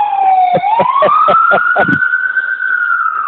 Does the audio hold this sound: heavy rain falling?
no